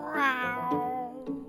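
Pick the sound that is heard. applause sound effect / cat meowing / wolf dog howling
cat meowing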